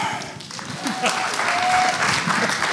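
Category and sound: crowd, audience clapping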